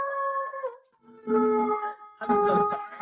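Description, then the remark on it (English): A female dog howls at a passing siren in three long, wavering, tonal bursts, each rising and fading with brief gaps between, moderately loud, with no talking over it. “I was like, I have a feeling a siren is going to come through at some point and set her off.”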